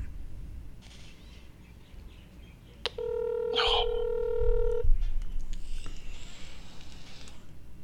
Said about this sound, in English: Phone's ringing.